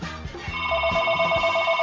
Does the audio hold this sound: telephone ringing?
yes